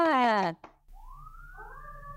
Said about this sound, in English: Woo-hoo! And I got sirens. I know. That's so fun. Usually I would edit that out, but that was actually so perfectly timed that we'll keep it.